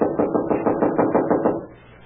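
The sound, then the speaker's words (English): A quick, steady series of about ten knuckle raps on a wooden door, fairly loud and hollow-sounding, stopping after a second and a half and leaving a brief fading tail. “I'm wearing out my knuckles on this door.”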